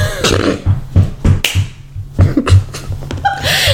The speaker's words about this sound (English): My dog is scratching his ear. He's the worst. The worst.